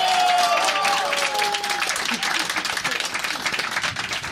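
An audience applauds steadily, a dense wash of many hands clapping with some cheering and a few whistles or shouts rising at the start, continuing at a fairly even level throughout.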